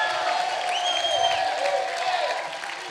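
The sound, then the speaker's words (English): A crowd claps and shouts unto God together in a sustained, loud wash of noise, with a few high whoops and cries rising above the steady applause throughout. “Clap your hands, all ye people. Shout unto God with the voice of triumph.”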